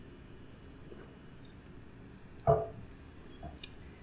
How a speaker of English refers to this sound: And I'm just going to get a quick drink of water.